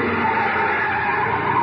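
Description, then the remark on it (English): A car skids hard to a stop at the end of an alley leading toward the freight yards, tires squealing in a loud, sustained screech with the engine noise underneath, lasting under two seconds. “Yeah, this is as far as we can go in the car.”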